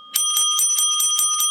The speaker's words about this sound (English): Remember, oh, the bell. The bell is back. The bell's back.